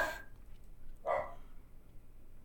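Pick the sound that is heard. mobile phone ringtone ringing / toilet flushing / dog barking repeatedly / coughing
dog barking repeatedly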